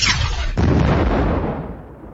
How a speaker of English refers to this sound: Open fire! Second enemy ship detected. Firing all cannons.